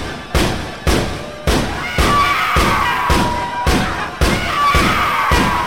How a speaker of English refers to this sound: Puckle gun's quite loud, your ladyship.